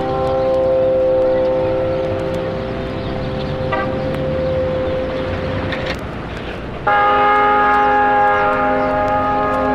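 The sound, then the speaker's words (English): Church bells of Saints Peter and Paul in North Beach, San Francisco, chime loudly, their tones ringing and overlapping in a long sustained hum, before a fresh, louder peal strikes near the end. No one speaks. “Those were the chimes of Saints Peter and Paul in North Beach.”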